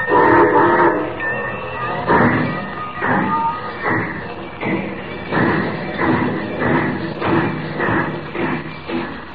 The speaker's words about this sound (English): Unknown to Superman, the train carrying the cargo of gold and Jimmy Olsen starts on its trip an hour earlier. We know, though Superman does not, that the Rainbow Bridge will be blown up as the train passes over it.